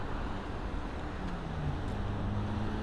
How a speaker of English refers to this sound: Traffic's gonna get really bad really quick.